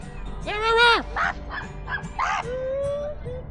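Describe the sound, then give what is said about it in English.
A few sharp, whiny dog barks and yips come in an irregular burst, moderately loud, followed by a thinner drawn-out yelp, over a low steady background rumble, on a street in New York. “Is that him barking, or are those dogs?”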